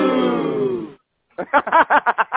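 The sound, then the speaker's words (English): A crowd boos, played as someone's intro sound on a talk show, in a loud, sustained low drone for about a second and then cuts off. After a short pause come several rhythmic, choppy bursts of voices. “Why am I getting booed? Why did I get booed?”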